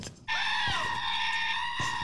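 A goat lets out one loud, drawn-out bleat that sounds almost like a human scream, sustained for well over a second, with nothing else around it.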